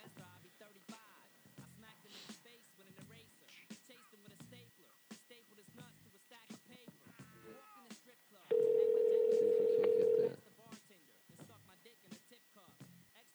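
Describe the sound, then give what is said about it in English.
People talk, then a loud, steady telephone ringback tone sounds once for nearly two seconds as they call a man on the phone, before the talking picks up again. “See if we can get our guy on the phone.”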